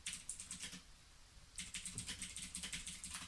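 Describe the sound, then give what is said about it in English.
Rapid clicking of keys on a computer keyboard, fairly loud, in a steady burst that pauses briefly before resuming at a quick, even rhythm. No voices. “Oh, he's typing.”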